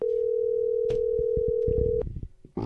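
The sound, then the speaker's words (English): A steady electronic phone tone hums for about two seconds over a series of soft clicks and thumps as a phone call to a woman is placed again, then cuts off abruptly, leaving brief muffled rustling. “Let's call her one more time.”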